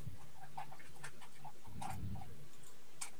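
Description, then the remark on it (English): A dog eating, with irregular crunchy clicks and soft smacking sounds scattered over a few seconds, fairly quiet and with no one talking. “you hear my dog's eating.”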